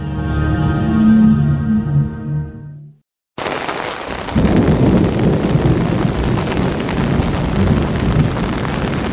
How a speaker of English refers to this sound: There is a loud clap of roaring thunder above us. We are back at the neighborhood and talk on Stefanie Street. Rain suddenly begins to pour down on us. We open our umbrellas.